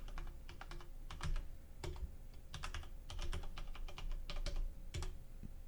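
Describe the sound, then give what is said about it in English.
Rapid, irregular clatter of keyboard keys while logging in to audible.com, with clusters of crisp clicks and brief pauses between bursts over a faint steady hum. No one speaks. “Good thing it's not there's no touch tones with the keypad.”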